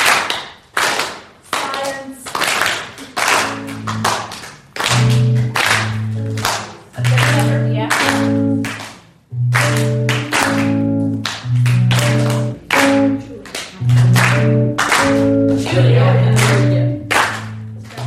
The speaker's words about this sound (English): So if you could clap with me. So do what I do. So we're going to leave a space and we're going to clap twice. So space.